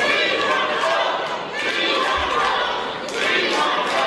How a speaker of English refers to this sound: Members of Mayor Lightfoot's administration were supposed to give a presentation, but were interrupted by angry outbursts.